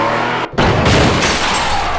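After a sudden brief dropout, a loud car crash erupts as another car T-bones a Mercedes and spins it out: a heavy impact followed by sustained crunching, grinding noise that stays intense to the end, with no voices.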